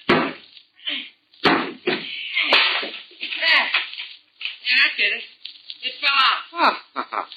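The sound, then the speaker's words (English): Several sharp, loud knocks strike a wooden bathroom door at irregular intervals, each a crisp thwack, as someone knocks out a sawn piece of wood around the doorknob, with people talking and moving around between the blows. “Now, just see if you can knock that piece out, will you?”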